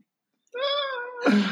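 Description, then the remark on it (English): A single drawn-out cat meow, fairly loud, rising into a harsher, louder ending after a brief silence at the start; no talking. “Now, this cat is getting his tail in my face. Okay, the cat's here now.”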